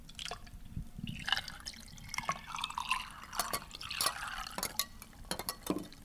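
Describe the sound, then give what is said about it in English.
Liquid trickles and splashes into a glass while mixing a bourbon cocktail with maple syrup, maple water and lime juice, with scattered drips and light clinks of glassware, fairly quiet, with no one talking. “So I made bourbon with some maple syrup and a little splash of maple water and then just a little bit of lime juice.”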